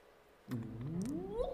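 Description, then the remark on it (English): A pet domestic cat purring, heard alone: a smooth, steady hum that starts abruptly and slowly rises in pitch over about a second. “That sound is David Acord's pet cat, Porkchop, purring.”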